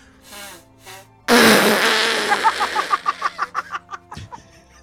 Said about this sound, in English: but, this is the part where, like, I'm going to stop and blow my nose, and whoever is editing this would cut this out. But since we're live, you all get to watch me or hear me blow my nose off screen.